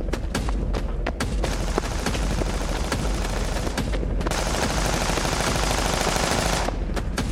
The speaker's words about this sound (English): I jumped behind a stalled SUV as bullets hit the ground around me.